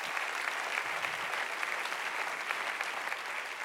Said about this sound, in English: Clap your hands.